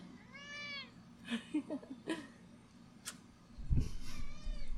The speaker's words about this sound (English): I love the way he meows. He goes like this.